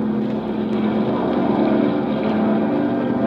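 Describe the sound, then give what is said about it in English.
A seaplane's propeller engine roars steadily at full power while taking off on water, gathering speed with waves slapping at its pontoons; a loud, unbroken drone with a strong low hum and rushing noise over it. No one speaks. “We gathered speed like a roller coaster, the waves slapping at the pontoons.”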